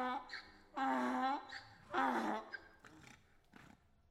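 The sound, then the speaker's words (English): A donkey brays, two loud, raspy heaving calls followed by a few weaker, breathy wheezes as the bray trails off. No one speaks. “Now we get to the part about the donkeys.”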